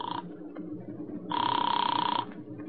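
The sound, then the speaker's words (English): A telephone call to a newspaper in Chicago rings with a rapid, trilling warble: a brief clipped burst, a pause, then a longer ring of about a second over a low background hum, moderately loud. “I put in a call to Chicago and got the paper on the phone.”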